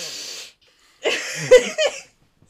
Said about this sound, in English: Hang on, I need to sniff on my nose.